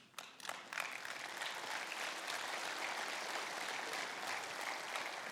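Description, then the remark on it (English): A crowd bursts into applause, many hands clapping in a dense, steady roar that swells within the first second and holds evenly to the end, with no voices standing out. “And if you can't bring yourself to join in on the clapping, I understand, because some of you are maybe sitting there going, okay, I hear all that.”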